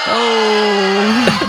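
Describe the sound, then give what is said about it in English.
A booing sound effect played from a phone: one long, low, mournful tone that holds steady for about a second, then bends upward and breaks off at the end, with no talking. “It was supposed to be booing. I'm playing it from my phone.”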